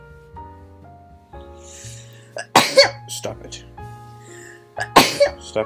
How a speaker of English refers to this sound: Say bless you. Bless you.